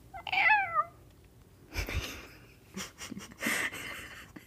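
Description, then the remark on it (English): A person's voice imitates a cat with one short, falling meow at the start, followed by several breathy, wheezy bursts and snorts. “With my meowing?”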